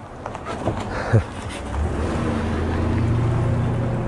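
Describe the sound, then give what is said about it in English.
A car approaches and goes by outdoors, its low engine rumble swelling after a quieter start and holding steady toward the end, with a faint wash of wind or road noise around it. “I think there is a car coming.”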